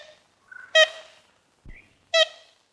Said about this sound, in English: You used to be able to hear the call of the ivory-billed woodpecker throughout old-growth forests from the southeast all the way up to Illinois, Oklahoma, and Missouri.